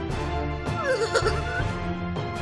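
A horse whinnies in a shrill, wavering burst lasting about a second, heard over a dense, steady backdrop of other sound, moderately loud.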